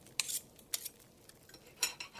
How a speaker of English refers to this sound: It was succeeded by a breathless pause, as Mrs. Cratchit, looking slowly all along the carving knife, prepared to plunge it into the goose's breast. Cut the goose, Mama!